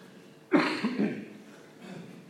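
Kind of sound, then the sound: human body sound, loud cough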